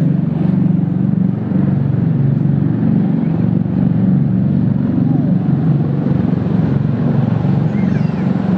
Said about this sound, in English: Those are like that. Those are like some insane vertical takeoff and landing airplanes. VTOLs. Those are like helicopters, aren't they? They are helicopters, but they're also planes.